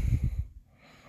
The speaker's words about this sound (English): Man, sorry if I'm yawning, guys. I'm recording this at night, and as much as I would like to get it done in the day, I feel like it's one of those to-do list things that I wanna, that I kinda have to do, or else I'm probably gonna forget.